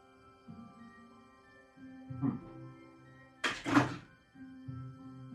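An object gets knocked over by someone stepping away from the microphone while tasting a cookie: a soft bump, then a louder, sharp thunk with a brief rattle, over a steady low hum and no talking.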